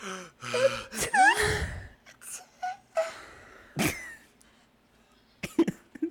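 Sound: exaggerated sneeze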